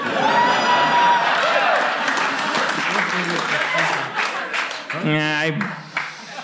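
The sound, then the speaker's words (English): An audience applauds in a dense, even wash of clapping that feels dutiful rather than enthusiastic, with a few whoops and a brief harmonic voice rising out of the crowd near the end. “I've also been intuitive, and I know forced applause when I hear it.”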